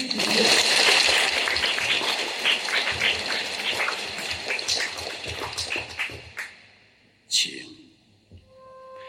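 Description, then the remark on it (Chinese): A large crowd at a Catholic Mass applauds to thank a priest, with dense, steady clapping that fades out after about six seconds, followed by a few quieter scattered sounds and a brief burst of noise near the end. “让我们一起再次掌声感谢他，也希望他能够早日退休，来我们堂区陪伴我们啊。”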